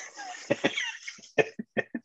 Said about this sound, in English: Thanks for turning away and coughing though.